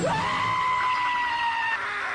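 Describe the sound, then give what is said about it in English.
A sustained, high-pitched scream rises sharply and holds steady for about two seconds, loud, with a shrill, strained tone and no other sounds around it. “No, it's definitely a giant alien, otherwise they wouldn't be screaming.”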